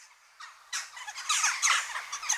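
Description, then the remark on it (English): A flurry of harsh, crow-like "jack" calls from jackdaws, several calls overlapping in quick, excited chatter that grows busier and louder toward the end, with no talking. “They're known sometimes as chimney sweep birds because they fall down chimneys and dislodge soot.”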